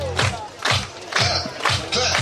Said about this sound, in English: Everybody clap your hands. Let's see what happens. Clap your hands.